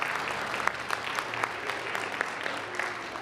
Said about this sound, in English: I'm wondering if there are any newcomers who might be willing to just raise your hand so we can say hi, welcome you with applause. Welcome.